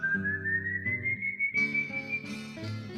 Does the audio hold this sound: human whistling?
yes